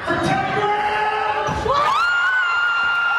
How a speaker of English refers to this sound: Yes, he can, and the crowd goes wild.